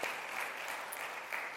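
An audience claps steadily, a dense wash of many hands at an even, moderate loudness with no voices over it.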